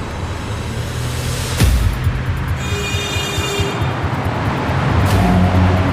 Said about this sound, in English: Each day starts in the suburbs of Washington, D.C. Then I start my truck.